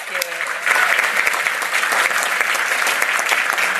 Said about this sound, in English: So let's give her a big round of applause for this, right?